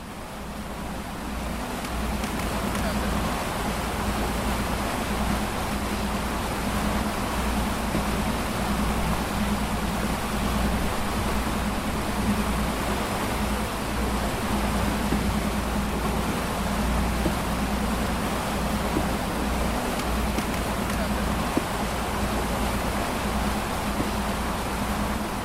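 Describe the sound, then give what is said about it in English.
A steady engine drone with a low hum runs beneath continuous rushing water and wash, like a boat moving across the sea. It stays loud and even throughout, with no voices. “Together with the movements of the boat and the sea, our bodies sink into a deeper inhabitance of this space.”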